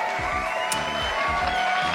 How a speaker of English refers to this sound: I thought that was just so fun. Yes, and the crowd goes wild.